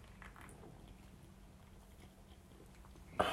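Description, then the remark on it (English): Someone takes a quiet first sip of beer after a toast, with soft slurping and swallowing sounds over a low steady hum, ending in a brief louder rustle. “We're going in first sip here.”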